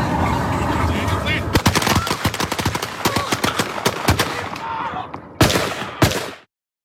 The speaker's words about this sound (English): Yeah, you heard that, right? You heard the two gunshots at the end of all of those shots. It was like a firing brigade, right?